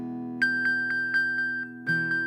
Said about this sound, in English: And so my Apple Watch has this really cool function that you can literally ping your phone even if it's on silent, okay? So pretend that I've lost my phone. I can ping it.